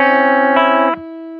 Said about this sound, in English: Yep, so instead of playing it here, though, I actually play the C here so I can get that ringing sound.